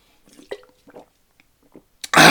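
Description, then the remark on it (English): A few soft clinks and handling noises from a glass, then water suddenly gushes loudly and steadily from a tap as someone gets a glass of water to drink. No one speaks. “Hold on, let me get some water, because I'm fuming!”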